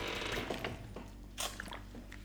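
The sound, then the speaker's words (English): A chair creaks and squeaks in a few irregular bursts, with sharp scraping, ratcheting strains over a steady low hum, fairly loud and with no one talking. “I'm sorry if this chair's really annoying. It's annoying me.”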